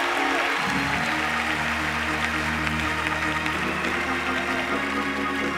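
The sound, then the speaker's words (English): An audience claps and shouts in a loud, continuous wash of applause and cheering, with sustained musical tones running steadily underneath for the whole stretch. “You want him to move, somebody clap, somebody shout, somebody wave, somebody dance, somebody spin.”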